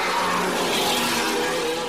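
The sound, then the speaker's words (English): A Formula 1 race car engine roars loudly at a Grand Prix, a dense, continuous high-pitched whine that holds steady for the whole couple of seconds with no voices. “Like, the cars kind of sound like if you were to put, like, a plane engine, like, right next to your ears.”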